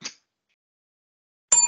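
bell ding sound effect

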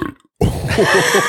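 loud burp

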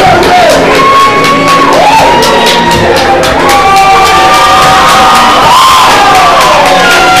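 wrestling crowd cheering

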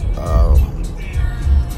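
car driving

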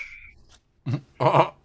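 neighbor's dog barking

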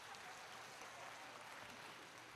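audience applause

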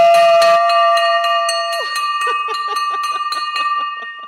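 victory bell ringing

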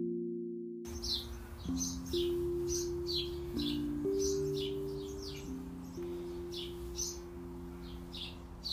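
birds chirping

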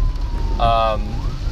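ambulance siren

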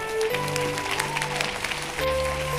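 audience clapping

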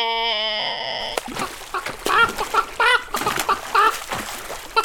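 chicken clucking

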